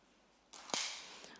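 A Christmas cracker is pulled apart by two people: a burst of papery rustling, then a single sharp, loud snap, followed by a broad, hissy rustle of torn paper that fades slowly.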